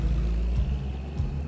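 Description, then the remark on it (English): A car engine rumbles low and steady as the vehicle drives off at night with its headlights off. Its deep droning hum holds a fairly constant level with a slight dip before fading away, heard alone without any voices. “The sound of the engine fades away, leaving Wright staring into the moonless night, wondering if he'll ever see his great-nephew again.”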